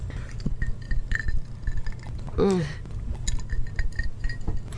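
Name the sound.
ice cubes clinking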